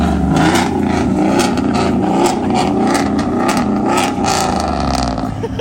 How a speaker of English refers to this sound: He's got a nice pipe on a, is that a 6-liter engine in that single cab?